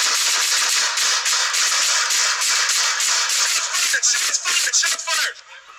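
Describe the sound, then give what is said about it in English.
Rapid, loud gunfire from several guns as officers exchange rounds at a robbery in progress, apparently at a 7-Eleven: a dense stream of sharp overlapping bangs lasting about five seconds before suddenly stopping, with a harsh, distorted edge. “Lots of rounds being exchanged.”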